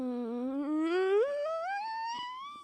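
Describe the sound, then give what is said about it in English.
A person imitates a startled chicken with one long, unbroken vocal squawk whose pitch climbs steadily from low to shrill over a few seconds, steady in loudness, with no other talking. “Is that the funny noise or the chicken? Both.”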